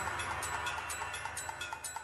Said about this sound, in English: The minutes multiply, turning into hours and today's, which is why 60 seconds make a minute, 60 minutes make an hour, 24 hours in a day. As time keeps tick-tock ticking away, bye-bye for now.